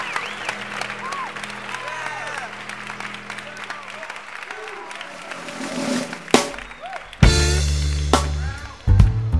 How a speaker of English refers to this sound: Let's give this creative baptismal group a nice round of applause.